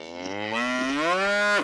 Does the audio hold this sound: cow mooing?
yes